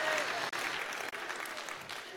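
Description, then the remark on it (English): An audience claps steadily, a dense wash of many hands sustained for a couple of seconds without letting up, moderately loud and evenly spread like a roomful of people applauding. “You better be clapping at that, man, or it's going to be a long night for you tonight.”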